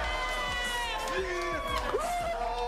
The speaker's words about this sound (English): What an emotional moment for the Dayton Flyer. Getting a round of applause from Adam Silver.